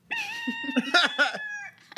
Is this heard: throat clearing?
no